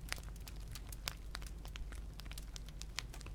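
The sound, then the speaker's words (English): Soft, irregular crackles and pops from a fire, steady throughout over a low background hum, quiet with no voices. “Each soft crackle of the fire, allowing your mind to let go more now, and your body to continue seeking that restful deep sleep that you desire.”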